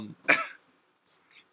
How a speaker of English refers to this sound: Just burped. Sorry, he had meatloaf tonight.